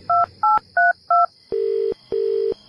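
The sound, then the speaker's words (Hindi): A babysitter phones the parents: four quick, evenly spaced telephone keypad tones beep clearly, followed by two longer, lower ringback tones as the call connects. No voices, just the clean phone sounds. “जब दाई ने उन्हें फोन करके पूछा कि क्या वो रूम में जाके केबल टीवी देख सकती है, तो उन्होंने कहा कि बिल्कुल देख सकती है”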